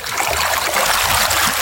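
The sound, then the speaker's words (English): A steady babbling brook just off a main road in a green town, water trickling and burbling continuously over stones with a bright, bubbly texture and no voices. “I've stumbled upon a babbling brook because I walked off a main road just a minute away and I feel like I'm in the countryside.”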